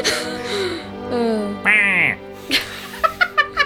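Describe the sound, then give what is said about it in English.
A person imitates a crow cawing: a few drawn-out, raspy caws, then a quick run of short, clipped ones near the end. “You see a crow swoop down and sit upon its shoulder. It caws.”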